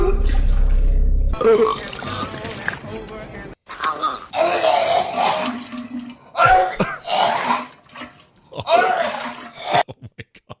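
Several separate bursts of exaggerated, fake-sounding vomiting from four movie clips: loud gagging, groaning retches and wet gurgles, each separated by short pauses, ending with a few quick faint clicks. The last, about seven seconds long, is John Goodman's from the film Barton Fink.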